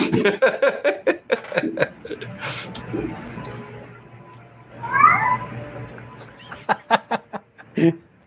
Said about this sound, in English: The greatest interjection of a cat ever. Yeah. He's very vocal tonight.